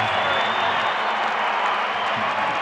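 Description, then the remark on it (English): A Utah Jazz home crowd in a Salt Lake City basketball arena roars and cheers during a Cleveland timeout after a 19-3 Jazz run put Utah up by 11, a loud, steady wall of sound, with scattered clapping and shouts blending into a continuous din. “Listen to the crowd!”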